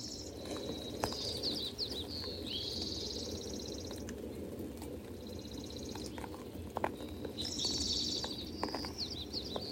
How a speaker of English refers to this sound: Feeling into the impact the songs of the birds have on our heart. Just feeling without thinking. The birds greet the morning light.